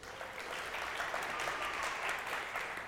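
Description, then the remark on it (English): A couple of people in an audience clapping, asked to clap as if something amazing has happened, in a steady, even patter that lasts about three seconds at a fairly constant level, with no voices over it. “I had like two claps.”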